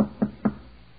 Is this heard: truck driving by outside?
no